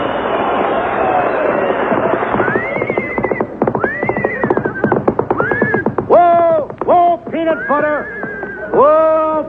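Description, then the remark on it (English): A horse whinnies in a series of rising and falling cries while hooves clip-clop steadily underneath, fairly loud, with a muffled, narrow-band quality like an old broadcast. “Costello, what in the world have you got there? Oh, what do you think it is? It's a horse, isn't it?”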